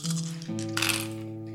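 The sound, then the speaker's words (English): Six dice rattle and clatter together in a quick roll over a steady humming tone that shifts pitch partway through; no one speaks. “Okay, 6 dice.”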